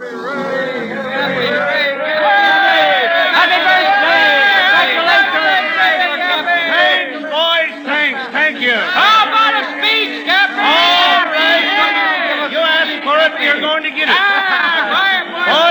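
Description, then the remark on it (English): A large crowd of sailors and ship owners on the steps of the Blue Star Line shipping offices by the busy wharves chatters loudly and continuously, many overlapping voices calling out in a lively, festive hubbub, congratulating Cappy Ricks on his 60th birthday, dense throughout. “On the steps of the Blue Star Line, Cappy Ricks, the president, faces a huge crowd of sailors and ship owners. In typical waterfront fashion, they're congratulating the old-timer on his 60th birthday.”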